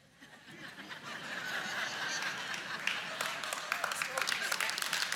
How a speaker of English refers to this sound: And they're clapping because they love you.